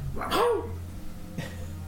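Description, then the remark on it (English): A dog, Snoot, held under someone's arm and wagging his tail, gives one short, sharp bark, followed about a second later by a fainter, briefer yelp, all over a steady low background hum. “He wags his tail and barks.”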